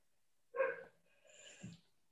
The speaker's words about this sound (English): you want me to stop that dog from barking? That's okay,